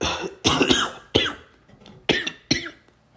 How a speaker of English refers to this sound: cough attack, oh my god. That was a bit rough,